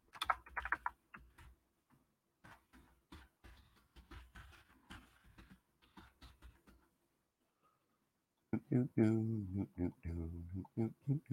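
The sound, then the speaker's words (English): Rapid typing clicks on a computer keyboard for about seven seconds, clear, in irregular bursts; after a brief pause, a person starts talking while a few more clicks continue. “When I listen back to this, it sounds cool when I'm typing.”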